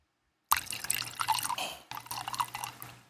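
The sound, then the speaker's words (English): Kraken rum is poured into a glass, a splashy, gurgling stream lasting a couple of seconds, pausing for an instant midway before flowing again. No one speaks. “Splashy sound effects of Kraken.”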